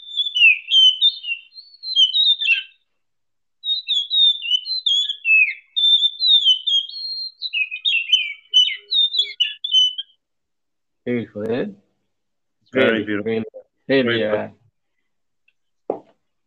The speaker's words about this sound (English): now, and we see it, especially near the water, especially when I'm around by the water, especially in the morning times. It's so beautiful to hear. It's so nice, so enjoyable to hear it. This bird, yes.